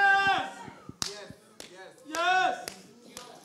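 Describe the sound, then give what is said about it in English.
Several sharp, scattered slaps ring out as audience members slap their neighbours amid a lively crowd, with raised voices calling and talking over and between the smacks. “Oh, slap your neighbor”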